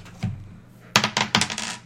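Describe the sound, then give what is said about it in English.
Dice are rolled, clattering across a hard surface in a quick burst of sharp rattling clicks, tumbling and bouncing several times before settling, with no voices over them. “We're going to roll the dice.”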